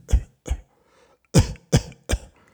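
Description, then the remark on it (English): Five short, sharp coughs from a person told to cough during a strip search: a pair, a brief pause, then three more in quick succession, each a harsh burst with no talking between them. “Turn around, spread them open. Let me see. Cough.”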